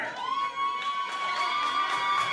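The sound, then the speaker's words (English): A crowd of people screaming and cheering at full volume, a dense unbroken roar with a steady high-pitched ringing tone running through it for the whole stretch. “All right, now it's just starting to sound like a bunch of people screaming on a microphone.”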